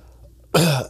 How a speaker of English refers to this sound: COVID. Dude, I don't have COVID. Chill the fuck out, bro. Keep coughing on me, man.